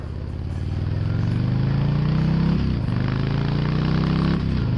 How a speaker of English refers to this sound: Very unusual. I've never seen an exhaust like this on a Harley. Pretty interesting, though, huh?